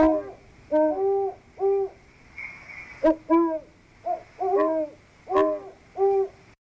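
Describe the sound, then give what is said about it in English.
A great horned owl gives a series of deep, soft hoots in short rhythmic groups, clear, with no voices and only faint background noise between the calls. “Strictly nocturnal, the great horned owl is easily identified by its deep, soft hooting.”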